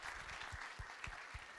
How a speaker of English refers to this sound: Well, how about we give our rookie agent a big round of applause?